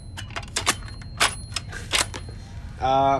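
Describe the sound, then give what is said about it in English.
A toy cash register with a built-in PA system clicks sharply about eight times in an uneven rhythm, fairly loud, then gives a short buzzy electronic tone at the end. “Basically, he's got this cash register with like the PA system, and he loves to talk into it now, and say like, no joke, bruh emote.”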